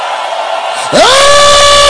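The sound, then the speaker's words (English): An audience roars with loud shouting, then one voice leaps into a long, rising yell that rings out over the steady crowd noise. “Cry out and shout.”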